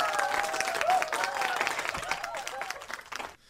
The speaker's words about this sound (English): I mean, I'm going to give him a round of applause.